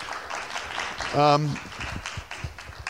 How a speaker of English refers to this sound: So maybe a round of applause for our panelists.